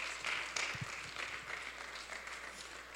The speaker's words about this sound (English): Praise God. Give Jesus a big hand clap. Thank you, Lord. Thank you, Jesus. Praise you, God.